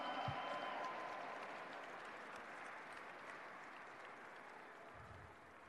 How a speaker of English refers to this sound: Another big round of applause for Gordon J. Lau Elementary School.